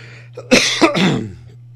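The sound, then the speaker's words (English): A loud cough bursts out in two or three harsh, rapid hacks, ending with a throaty rasp, over a faint steady electrical hum. “No, that is not Corona for you, because Corona doesn't make you cough, bitches.”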